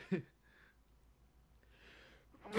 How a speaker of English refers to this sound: And hold on, I'm gonna sneeze. It's becoming a segment on the show.